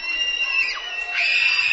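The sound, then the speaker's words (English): A basketball crowd lets out a sustained, shrill scream to distract a Willard Flashes player shooting a free throw against Margaretta, high-pitched and continuous, with a couple of voices sliding in pitch partway through, holding steady and loud throughout. “Despite the best efforts from the crowd behind us, trying to distract him from that free throw.”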